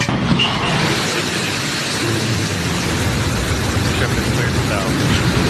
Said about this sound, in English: Blue Origin's New Shepard rocket blasting off on its way to space with 4 passengers on board.